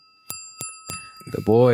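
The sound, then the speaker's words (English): Someone beatboxes a short, evenly spaced rhythm of three sharp mouth hits, then slides into a loud hummed note, a vocal beat that sounds like Jingle Bells. “That sounded like jingle bells.”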